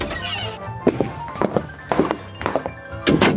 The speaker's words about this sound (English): Okay, we shut the door